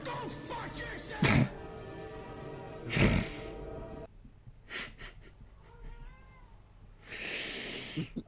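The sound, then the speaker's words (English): A cat sitting at a door meows several times, its plaintive calls rising and falling, broken up by a few short, breathy noise bursts. No one speaks. “hello cat. That shouldn't be a thing you transition as, especially towards. He's that's currently sitting at the door meowing”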